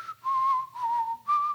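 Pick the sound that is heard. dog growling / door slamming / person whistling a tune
person whistling a tune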